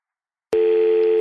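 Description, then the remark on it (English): A single steady electronic telephone beep, following a recorded phone message asking callers to enter their phone number, starts abruptly after half a second of silence and holds at a constant pitch, loud, with no voices. “If you'd like to be alerted when a new Speaker is named by text, please enter your phone number after the beep.”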